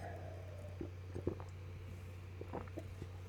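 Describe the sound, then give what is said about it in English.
Someone takes the last few quiet sips of water, with soft wet slurps and swallow clicks spaced over a few seconds against a low, steady background hum. “And that's the last bit of water from me right there.”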